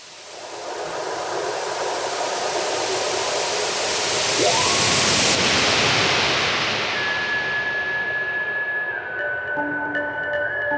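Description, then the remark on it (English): A waterfall's steady, loud roar of rushing water fills the whole stretch without a break, while a few thin high tones creep in faintly near the end. “you may not know that a waterfall will throw off the angels entirely.”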